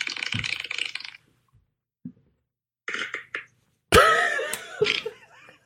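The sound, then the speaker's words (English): A series of fart noises: a sputtering burst, a couple of tiny pops after a pause, two short blurts, then a longer, louder, wetter rasp to finish. No talking. “Those farts have been brewing for a while.”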